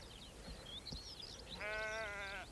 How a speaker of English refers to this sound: Scattered sheep around here. They do nibble these bilberries.